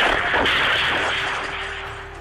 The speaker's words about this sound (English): The answer came quickly and violently. The unrelenting gunfire left dozens and dozens dead.